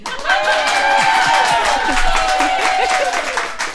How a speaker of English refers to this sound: And that was our studio audience, and maybe they could even clap once more and emit a few vocals.